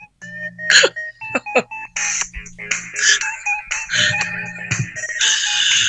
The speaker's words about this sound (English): My phone's ringing. Can you hear that? Yeah, play it. Let it.